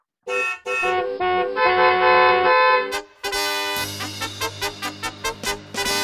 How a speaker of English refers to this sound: The Ridiculous Driver of the Week. Honk, honk.